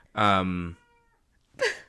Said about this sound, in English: Hold on. Sorry, heard one of our cats.